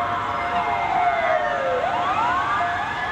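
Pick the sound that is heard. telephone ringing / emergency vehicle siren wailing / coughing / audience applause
emergency vehicle siren wailing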